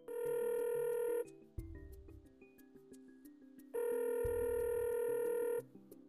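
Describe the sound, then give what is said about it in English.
A phone call is dialed and the line rings out twice, each ring a long, steady electronic tone lasting over a second, with a quieter pause filled by faint beeps and low hum between them. No one speaks. “So let me dial him up.”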